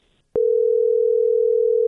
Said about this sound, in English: Okay, it's ringing. Okay, shh. Let me answer. Okay.